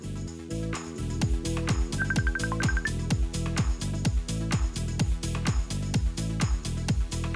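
A musical phone ringtone plays loud, a thumping repetitive beat with a brief high, beeping melody running over it for a couple of seconds, no voices.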